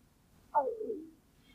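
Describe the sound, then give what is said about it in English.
A single soft stomach rumble, a brief gurgling growl that slides downward in pitch for about half a second, heard faintly during a quiet room tone recording with no one talking. “Might have picked up my stomach just then.”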